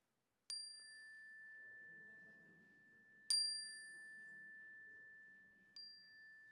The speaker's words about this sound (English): And as the chime rings, to speak them aloud into the room so that we can hold them with you.